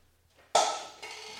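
Water pours into a glass, starting abruptly with a bright splashing rush and a faint ringing tone, easing slightly before a second surge of flow near the end.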